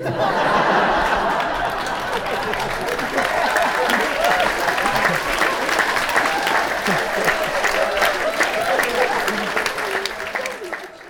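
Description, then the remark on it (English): A room full of sports media and reporters laughs and claps steadily at LeBron's answer, a dense wash of applause mixed with chuckles and scattered voices that stays loud for about eleven seconds before easing off at the end. “They laughed and laughed and clapped and clapped.”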